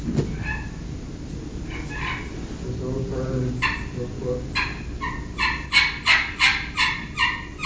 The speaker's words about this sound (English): It's a soft putt and purr. Brad does a real good job of doing soft calling stuff on the slate.